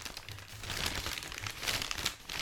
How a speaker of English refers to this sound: It unrolls like butcher paper does. It does.